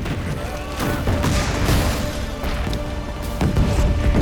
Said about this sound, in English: See, I'd love to make a movie where I could do something like that right there. Just all those explosions.